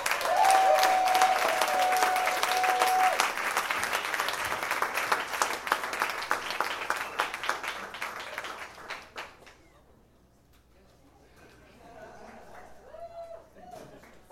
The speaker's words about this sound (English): Guys, huge round of applause,